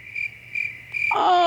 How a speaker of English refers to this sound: Oh, why did all of a sudden I hear crickets?